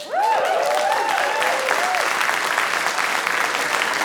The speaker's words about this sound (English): That's the first time anybody's clapped for my asthma. That is incredible. Okay, I'll take it.